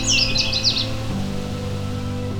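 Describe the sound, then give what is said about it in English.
A quick, jumbled burst of bright Canada warbler song rings out for under a second, then stops, leaving a steady low tonal hum underneath. “So there seem to be two Canada warblers here.”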